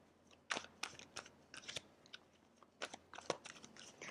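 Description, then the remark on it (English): A deck of tarot cards being shuffled for a reading by cold hands struggling to shuffle, with uneven bursts of crisp papery flicks and slaps separated by brief pauses, and no talking. “My hands are a little cold and I'm like struggling to shuffle.”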